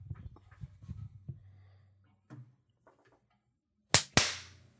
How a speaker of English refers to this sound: Okay. Claps. Felt good. Claps, claps, claps.